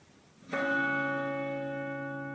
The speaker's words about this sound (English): Can you hear the bells from the church at the end of our road? I love that sound, but here's where it gets strange.